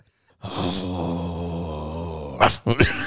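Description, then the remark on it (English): A person growls like a dog in one long, low, rumbling snarl lasting about two seconds, ending in a couple of sharp, breathy barking bursts, fairly loud. “But you just turn into a dog.”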